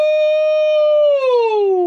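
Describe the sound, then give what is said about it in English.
A person howls like a werewolf: one loud, sustained, siren-like note held steady for about a second, then sliding downward in pitch, with no other sounds. “That was such a good howl.”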